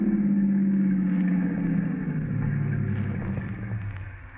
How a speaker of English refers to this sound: Would you stop the car? Stop the car? Sure.